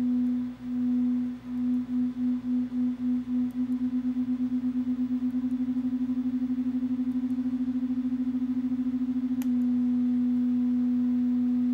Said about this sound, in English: So that beating up and down is this almost sort of third frequency that emerges from this. And what you'll hear if I increase the frequency of that second sine wave is that pulsing is going to increase its speed as well.